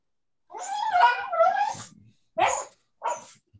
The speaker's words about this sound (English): Dying dog.